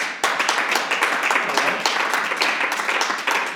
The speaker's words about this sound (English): Joe Biden, please clap.